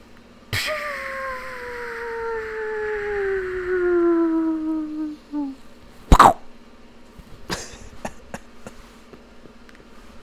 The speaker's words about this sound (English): Ralph, can you play the, that clip that sounds like an anvil falling on Wile E. Coyote?